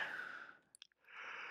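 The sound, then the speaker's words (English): A person yawns: a long, breathy drawn-in breath that fades, a brief pause with small mouth clicks, then a drawn-out airy exhale. No one speaks. “Yawn number two.”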